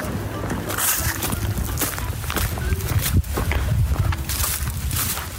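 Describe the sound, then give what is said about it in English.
Heavy stomping on the ground to crack open the green outer casings of fallen horse chestnut conkers, with repeated irregular thuds and crunching cracks as they break underfoot, over a steady outdoor rustle. “you find any on the floor, you might just need to kind of stomp on them to crack open that green outer casing.”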